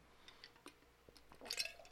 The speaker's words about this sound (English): Drinking my water here, not my fizzy water.